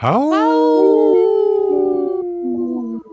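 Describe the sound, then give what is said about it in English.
A single long, rising-then-sustained wolf-like howl delivered by a human voice on the radio program Native Roots Radio Presents I'm Awake, loud, wavering slightly as it holds before breaking off near the end. “That was a good howl.”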